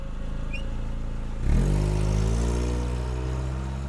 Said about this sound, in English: I started the car for the drive back.